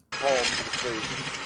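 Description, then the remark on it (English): A power drill, used by a man to tighten something right next to a pipe, runs in one steady, harsh whirring grind that starts abruptly and holds at an even loudness, with faint voice-like tones rising briefly over the noise. “What's going to explode? Whatever he's drilling right now.”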